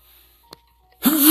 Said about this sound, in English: But hold on. Got a sneeze coming. Oh.